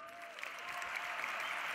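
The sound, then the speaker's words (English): A crowd applauds steadily for a couple of seconds, a dense, even wash of many hands clapping at once with no voices standing out. “clap it up for the youngsters one more time.”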